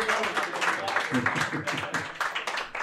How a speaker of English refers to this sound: It's okay to clap. Clapping is cool here. Clapping is very cool here.